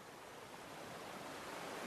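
A small waterfall, swollen by recent rain, rushes steadily into a deep pool at its base, making a continuous, dense roar of falling water with no breaks or voices.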